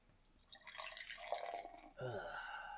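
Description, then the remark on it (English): A 12-fluid-ounce, 9.5% alcohol brown beer is poured into a glass: a steady, splashy rush of liquid that turns into a gurgling fill, its pitch rising as the glass fills, continuing to the end. “And the pour.”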